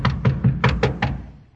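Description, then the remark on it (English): Six evenly spaced knocks on the door of a man's room, dull and solid with a low thudding body, struck at a steady rhythm and then fading into quiet. “All right, I'll knock.”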